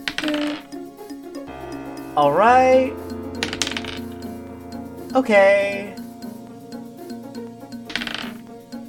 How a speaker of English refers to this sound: Okay. And I love some good old dice rolling in the middle of a climactic moment.